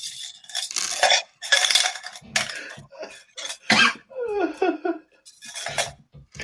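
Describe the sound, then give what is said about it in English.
Coins clink and jingle in a series of bright, metallic bursts as they are dropped and shuffled by hand, with a brief vocal murmur partway through. “Oh, there's some more coins.”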